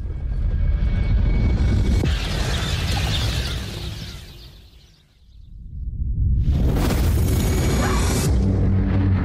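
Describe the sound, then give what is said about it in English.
A comet fragment's impact makes a huge, deep rumbling explosion that roars, fades to near silence midway, then surges back as a loud hissing blast wave. No voices are heard. “Wait, where's the explosion?”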